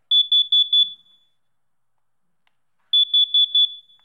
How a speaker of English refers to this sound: Wow. Smoke alarm. Just to let you know, for this illustration, I took this out of my house. So hopefully my house is not burning down at the current moment.